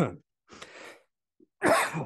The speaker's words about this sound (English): Man, you even get to hear me cough.